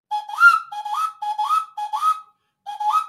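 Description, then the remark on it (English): A quail whistle blown five times in a steady rhythm, each call a short rising chirp that swoops upward and holds, clear with a brief pause before the last one. No one speaks. “And similar whistles was a quail whistle, which is actually, I'm doing research on this.”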